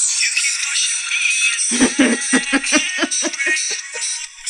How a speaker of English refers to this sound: Here's my ringtone.